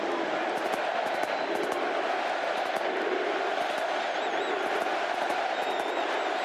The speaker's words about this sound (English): The Superdome erupted in cheers and chants of USA as Trump and Melania walked in.